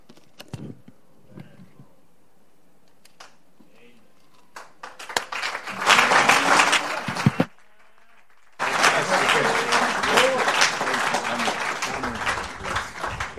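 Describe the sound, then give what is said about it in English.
A crowd breaks into loud, dense applause after a quiet moment, claps swelling for a couple of seconds, cutting off briefly, then resuming in a sustained burst of many hands clapping together. “A round of applause.”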